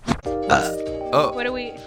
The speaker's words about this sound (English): I want to keep a burp counter because I feel like you burp once a podcast.